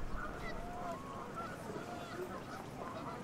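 Several geese begging for food honk repeatedly, their calls overlapping in a noisy, restless chorus against steady outdoor background noise.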